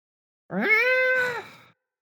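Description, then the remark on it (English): A single drawn-out cat meow, clear, rising in pitch at the start and holding a steady tone for about a second before trailing off, with no talking. “What do you want? You want pets? You want me to pick you up and put you on my lap again?”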